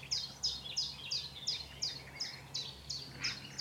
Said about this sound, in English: But when I heard that nightingale spark up, I suddenly realised, gosh, I haven't heard a nightingale before. Because it was so unlike anything else I'd ever heard.